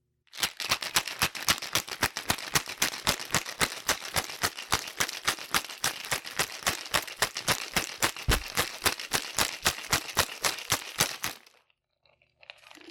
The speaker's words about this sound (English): So the instructions are pour creme de cacao and vodka in a shaker filled with ice and shake 40 times.